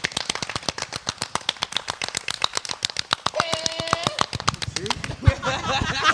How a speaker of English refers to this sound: Really, that really sounded like fucking five motherfuckers clapping extra fast.